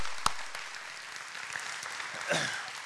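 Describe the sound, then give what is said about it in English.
An audience at Union Chapel applauds the 16 or so babies dedicated that weekend, with steady, dense clapping that holds at an even level throughout, starting with one sharp clap. No voices are heard. “So give them another big round of applause.”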